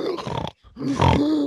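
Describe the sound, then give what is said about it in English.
A voice imitates the strained, choking snore of someone being choked whose body is struggling to get air in: two rough, gurgling grunts split by a brief silence, the second louder and longer with a rasping, throaty rattle. “I'd gone to the point where I was basically snoring, because I had gone that far in.”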